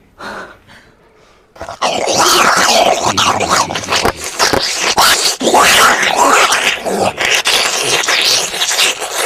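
An exaggerated sucking sound effect of a woman sucking a chicken: after a brief soft start, loud, wet, noisy slurping surges in and continues for several seconds in uneven pulsing bursts.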